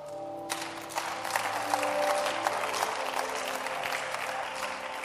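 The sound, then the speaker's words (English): An audience breaks into applause, a dense, steady wash of many hands clapping that starts after a brief pause and keeps going, with faint sustained musical tones underneath. “Anybody clapping today?”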